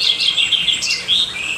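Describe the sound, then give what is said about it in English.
Birds chirp and call loudly and continuously, a dense, shrill chorus of overlapping high-pitched tweets and squawks, with no voices. “Damn, sounds like them birds are screaming.”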